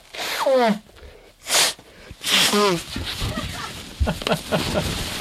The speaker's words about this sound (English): And I'm going to blow my nose real fast.